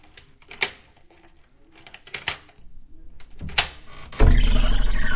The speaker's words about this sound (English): I pulled out my lockpicks.